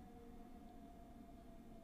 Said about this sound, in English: Do you hear the siren in the background?